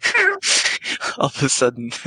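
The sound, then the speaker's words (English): A cat meows briefly amid chatty talk, and a person answers with playful meow imitations of their own, all within a couple of seconds. “Oh, hi, kitty. Meow. Meow.”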